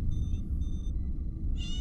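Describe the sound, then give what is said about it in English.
Three thin, high-pitched mews from newborn kittens, less than 24 hours old, in quick succession, the last one brighter, sounding over a steady low rumble in the background. “These kittens were born less than 24 hours ago.”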